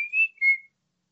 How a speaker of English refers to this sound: then that sounds like the kind of thing that would end with an Old Spice whistle. Probably.